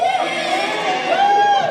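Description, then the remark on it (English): An audience yells and cheers loudly at once to vote a thumbs up for a movie they just watched, a dense sustained roar of many voices with a few higher whoops rising above it, holding steady for under two seconds. “Okay, let's make noise. If the movie was a thumbs up, yell right now.”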